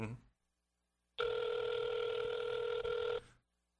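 An outgoing phone call rings once through the earpiece, a steady electronic ringback tone lasting about two seconds, fairly loud and close, followed by silence while waiting for an answer.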